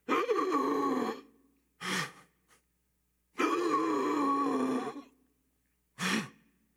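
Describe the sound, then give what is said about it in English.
A person imitates gasping for air as if slumped on a cross: two long, strained, rasping breaths, each followed by a short sharp intake, repeated in a laboured rhythm, fairly loud with no talking. “Said about 3 o'clock in the afternoon, Jesus on the cross, they whipped your shoulder muscles because you would kind of be slumped like this. And you're gasping for air.”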